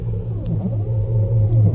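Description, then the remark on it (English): A failing aircraft engine, the number two engine at critical thermal overload, rumbles in a loud, steady low drone, with faint wavering tones sliding through it for just under two seconds and no voices. “Buddy, how's number two engine holding up? Thermal overload is critical, Skip.”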